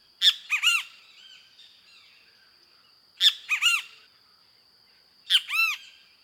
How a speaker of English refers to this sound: Several minutes later, the same kiskadee flies into view, lands on a dead limb close by, and gives a series of typical calls as another kiskadee sounds off excitedly in the distance.